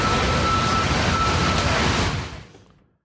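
Loud car noise, a dense roaring rumble with a steady thin tone running through it, holds for about two seconds and then quickly fades away. No one speaks.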